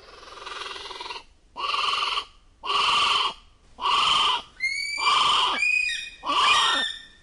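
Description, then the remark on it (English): North Island brown kiwi of New Zealand calling: about six loud, shrill cries in a steady rhythm with short gaps between them, the later ones carrying rising whistle-like tones, with no talking. “The North Island brown kiwi has just joined New Zealand's kea and riflemen in a select club of birds that have had their complete genome sequenced.”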